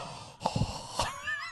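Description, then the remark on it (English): A voice imitates a man's heavy, wheezy breathing into the microphone: a few rough, airy huffs and gasps in quick succession, loud and raspy, with no words spoken. “He be breathing sometimes in the mic.”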